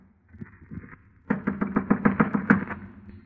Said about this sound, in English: I clenched my teeth, my knuckles, and knocked on the door.